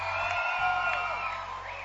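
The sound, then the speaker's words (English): A large audience at a worship service, including people in an overflow area outside, shouts and cheers together when asked for a shout, in a sustained, loud roar of overlapping voices, with scattered whoops rising above the dense wash of sound. “And those who are outside in the overflow, can I hear your shout outside?”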